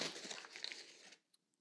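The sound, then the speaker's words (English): A quick burst of crinkling, tearing paper as the paper wrapping is torn off a bottle of Vat 69 Scotch whisky, lasting about a second, fairly loud, then stopping abruptly, leaving near silence with a couple of faint high ticks. “All right, paper-wrapped ones. Let's see what we got.”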